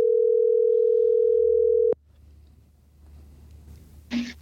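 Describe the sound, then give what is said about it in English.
A steady, loud telephone dial tone, heard while placing a call, hums for about two seconds, then cuts off abruptly, leaving faint line noise and a brief click or rustle near the end. “Let's call him here and see.”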